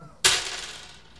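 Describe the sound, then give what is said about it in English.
A sudden loud clatter of many dice, eleven six-sided dice, tumbling at once, a bright rattling burst that trails off into a fading, scattered patter over about a second. “Jesus, that is a lot of dice.”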